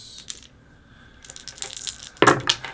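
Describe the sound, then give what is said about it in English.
Small hard objects, six-sided dice (d6) rolled for damage in a tabletop game, clatter and tumble across a tabletop in a quick burst of sharp clicks, ending with a louder rattle, with no talking. “So I double my dice, right? Mm-hmm. Mm-hmm. Can I get two more d6?”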